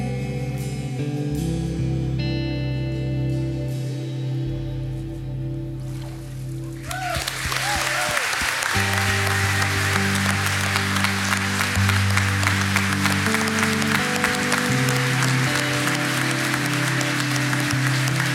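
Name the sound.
audience applauding and cheering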